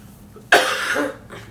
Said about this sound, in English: Are you afraid you're going to catch my smoker's cough here?